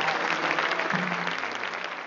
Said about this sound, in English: Can we give Jesus a hand clap?